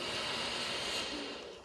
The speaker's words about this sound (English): And now we're on the thighs, so the mid leg from the knee to the hip. Breathing in.